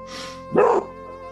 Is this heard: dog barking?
yes